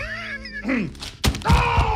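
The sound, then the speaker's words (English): A strained, wavering groan, then a sudden heavy thud as a person is knocked off a chair by Oreos shot at the chest, followed by more loud, drawn-out vocal cries. “You can knock somebody out of a chair with Oreos.”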